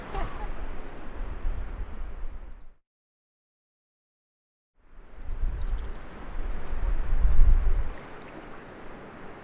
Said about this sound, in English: And the noises of the water as well. Mm. Because you can't hear anything else, can you? No. Just the waterfalls around us, and that's about it.